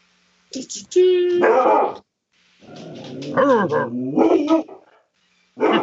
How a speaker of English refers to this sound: That's a big dog bark right there.